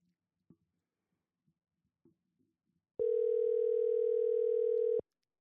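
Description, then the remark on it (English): After a few seconds of faint, scattered rustling, a phone's ringing tone sounds once as a call is placed to someone's mother, a loud, steady electronic hum lasting about two seconds, then cuts off abruptly. “Right now, I'm going to get my phone ready. We're going to call Mom.”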